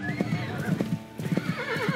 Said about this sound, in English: They create a posse of 30 tribesmen and 7 cavalrymen, and they're armed to the teeth with their fucking rifles, and they have horses. Okay, so they're fucking riding on horses, yo.